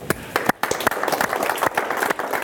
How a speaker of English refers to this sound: You know what you're clapping for? You're clapping for the faithfulness of all of you who are here on a Wednesday night.